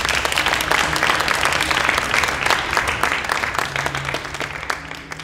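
Sustained applause from an audience at the end of a talk, dense overlapping clapping at a steady, fairly loud level for several seconds before easing slightly toward the end.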